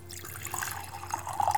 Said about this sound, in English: Was that legit, or were you using a sound effect? No, that's like actual pouring of liquids. Listen. How does it sound? Well, there we go. That sounds like, it could be a number of liquids, but I'll assume it's coffee.